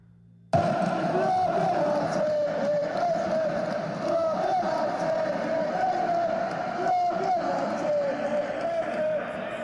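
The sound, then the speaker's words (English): A huge soccer crowd chants in unison, a loud, sustained roar of many voices with a steady sung pitch. It starts abruptly and carries on without a break for about nine seconds. “Soccer crowds are rabid, man.”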